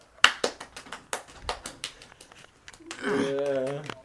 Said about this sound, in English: People love it when you clap your hands together.